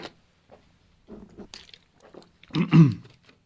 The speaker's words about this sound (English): sorry about that. Had to drink some water there.